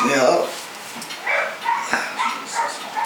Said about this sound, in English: How many dogs did you bring in, man? Are they all pit bulls? No.